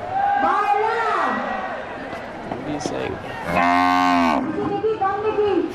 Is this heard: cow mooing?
yes